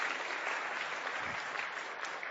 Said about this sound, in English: Brilliant. Give him a clap. Give him a clap.